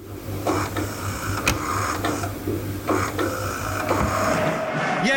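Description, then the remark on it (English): A small printer's motor whirs and clunks, its mechanical hum shifting through a few stepped pitches like a crude melody, with regular rattling bursts and no voices; the printer is being made to play a tune. “Let's see if it can play Allez le Bleu”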